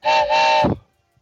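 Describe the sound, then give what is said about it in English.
A loud train whistle sound effect sounds in two quick blasts, the second held longer, with steady harmonic tones before trailing off into a brief low rumble and silence. “And on the line, Ken K-Train Kreitz. All aboard!”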